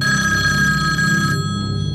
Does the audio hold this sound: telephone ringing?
yes